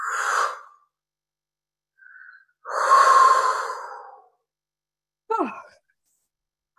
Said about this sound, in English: take like 3 deep breaths. Breathe out. Let it go, let it flow out of your system. Maybe yawn a little bit.